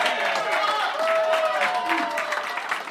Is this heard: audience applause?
yes